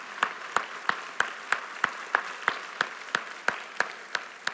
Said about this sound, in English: So if you are a senior graduating on any level, if you are a family member of a senior, would you stand up and just let us clap for you and say, well done? Let's say well done to those families.